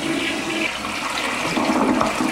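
A toilet flushes with a steady, loud rush of water, a broad hissing gurgle that holds evenly for a couple of seconds with no voices.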